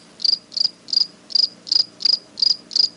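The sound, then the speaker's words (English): A cricket sound effect chirps in a steady, evenly spaced rhythm, eight bright, trilling pulses over a few seconds, clear against a faint, quiet background with no voices. “This is where I'm inserting the cricket sound.”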